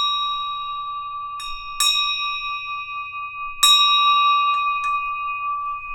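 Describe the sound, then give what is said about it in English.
A bell rung to mark the opening of a live-streamed prayer service rings with a bright, sustained tone, struck again several times at uneven intervals, each strike renewing the long shimmering ring. Fairly loud, with no voices. “And I'm going to ring the bell again just because I can.”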